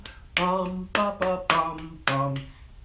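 Five sharp hand claps in an uneven rhythm, demonstrating a 16th-note rhythm with two claps for each eighth note, each landing with a sung, wordless 'bum' or 'ba' syllable that holds a steady low pitch briefly before the next beat.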